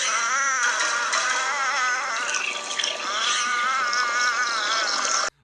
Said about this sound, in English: Sarah Beth is watching all this stuff go down, by the way, and they play like stupid little cat noises when she's watching it.